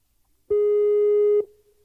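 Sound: skype call ringing tone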